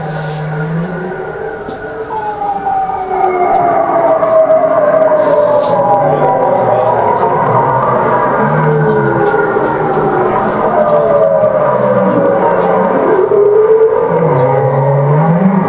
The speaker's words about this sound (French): Pas n'importe quelle baleine, c'est des baleines franches boréales. Ce qui est assez fou, c'est qu'on a l'impression d'entendre des sons des années 60 dans les premiers synthétiseurs analogiques.